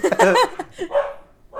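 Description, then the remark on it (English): The household's dogs bark in a quick, loud flurry, a few sharp yelping barks overlapping before trailing off into a couple of softer, scattered ones. “Oh, no, the dogs.”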